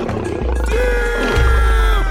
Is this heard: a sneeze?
no